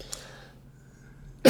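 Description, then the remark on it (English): A sharp, loud cough bursts out suddenly at the very end after a stretch of quiet room tone, cut off abruptly. “I would just like to point out that I brought him a water so that, you know, he wouldn't cough.”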